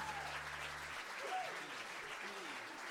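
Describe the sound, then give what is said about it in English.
An audience claps steadily along to a Roma wedding song for a few seconds, a dense, continuous wash of many hands, full, with faint voices mixed in underneath. “That was probably the best audience clapping that I've seen for a long, long time, really.”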